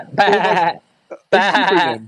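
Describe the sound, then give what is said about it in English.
A person does two drawn-out, wavering vocal bleats, imitating a sheep, separated by a short pause; the voice is fairly loud. “So you're a sheep, are you?”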